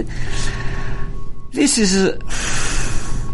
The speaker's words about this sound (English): This is simple breathing. Really can invigorate the energy, vitality.